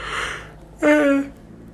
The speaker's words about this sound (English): How you know I'm getting old, bitch, because I'm yawning and I yawn twice. Oh, I'm so sorry for your ears.